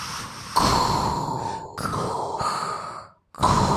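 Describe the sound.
Loud heavy breathing, used as a sound effect, rises and falls in long, rasping breaths, with a brief silent pause before another deep breath starts. No voices are heard.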